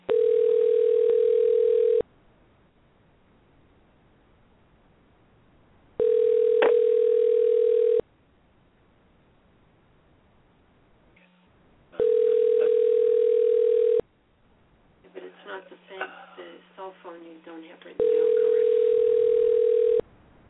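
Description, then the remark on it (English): A steady telephone tone over a phone line sounds in two-second bursts separated by roughly four-second silences, repeating four times, with a brief muffled voice talking on the line before the last burst. “I will, but the problem here is this is for some reason isn't hanging up.”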